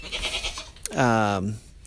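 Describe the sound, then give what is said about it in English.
A goat lets out a single wavering bleat, loud, its pitch sliding downward over about half a second, with faint background noise before it. “But we have 3 different varieties of goats now. We have pygmies, which is our biggest in number.”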